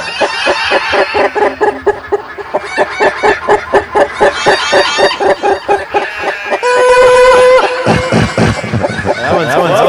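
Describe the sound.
Chickens further down a mountain cluck rapidly and continuously in a rhythmic, busy, loud chorus, with a brief higher squawk or crow near the end and what sounds like voices mixed in.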